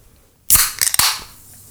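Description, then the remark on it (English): A can of Nexba soda snaps open: a sharp crack with a couple of quick metallic clicks, followed by a brief hiss of fizz that fades away. No one speaks. “Yeah, good crack. I like that.”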